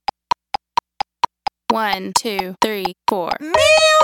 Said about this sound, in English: This is exercise number two, part B, ascending on miu-iu-i. Keep your sound very whiny, much like a toddler throwing a fit, and continue using the vocal fry.